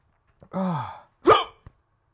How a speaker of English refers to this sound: Oh, chili head rush. And chili hiccups. Oh dear.